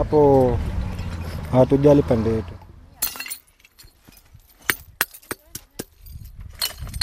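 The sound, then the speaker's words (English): A voice speaks briefly, then a waste picker who sorts glass bottles smashes them to reduce their volume: several sharp crashes and tinkling clinks at irregular intervals, loud, with faint clattering of shards between blows. “he has to break the bottles in order to reduce their volume”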